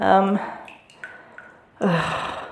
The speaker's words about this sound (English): That infernal dripping. It won't stop. It kind of follows you.